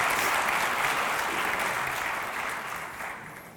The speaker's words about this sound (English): You're a good sport. Okay, give him a round of applause.